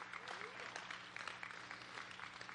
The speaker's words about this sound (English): Thank y'all for clapping because you just got me off the hook.